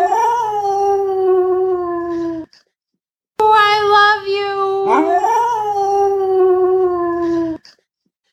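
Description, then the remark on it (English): A dog named Bentley howls in two long, wavering, tuneful phrases separated by a short pause. Its pitch rises and falls so the howl sounds almost like the words 'I love you'. “And she got to help an assistance of her dog, Bentley.”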